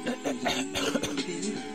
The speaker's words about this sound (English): I'm still coughing. Hold on.